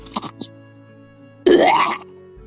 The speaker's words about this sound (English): Coughing right in your face. coughs up some phlegm.